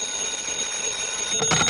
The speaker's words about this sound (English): Your number is ringing, Mr. Dollar.